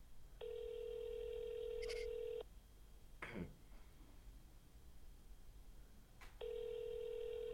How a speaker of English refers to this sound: All right, I'm calling these people.